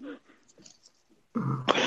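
sneeze

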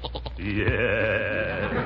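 goat bleating

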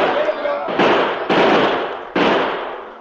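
gunfire volley

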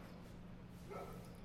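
dogs barking and fighting

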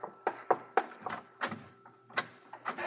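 door being opened

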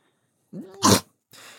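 a person sneezing

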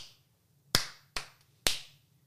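hand clapping

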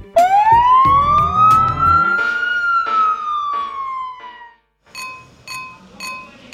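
fire truck siren

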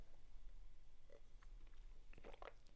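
sipping rosé wine

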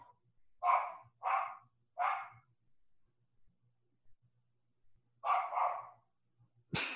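dogs barking

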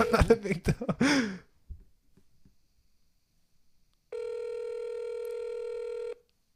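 phone call ringing tone

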